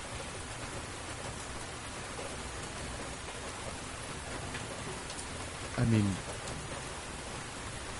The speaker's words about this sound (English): Now this rain is really nice.